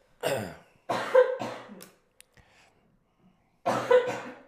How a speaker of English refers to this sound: Sorry. Yeah. I don't know why I'm starting to cough a lot.